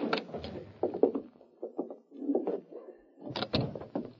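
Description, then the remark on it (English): An office door is unlocked and opened, with a run of clicking, rattling latch and handle noises followed by the creak and scrape of the door swinging, with no voices. “Open your door and go right in.”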